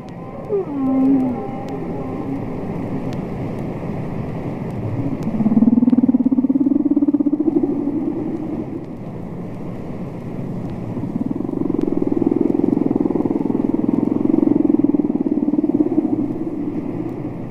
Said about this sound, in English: So I started to do those things and I just had this urge to sit with the whale song and just put the headphones on and listen.